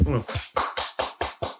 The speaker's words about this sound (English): Very well said. I've taken my hands from under my legs to applaud you.